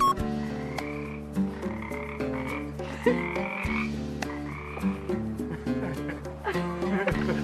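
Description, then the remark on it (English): A dense chorus of frogs in Malibu croaking loudly and continuously, many overlapping calls forming a thick, droning wall of sound with no pauses. “And there were these frogs because we were in Malibu and they were so loud.”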